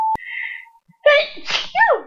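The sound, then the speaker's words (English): A single loud sneeze bursts out after a quiet moment: a voiced, drawn-in buildup followed by a sharp, noisy explosive release, with no talking. “That's a really bad sneeze.”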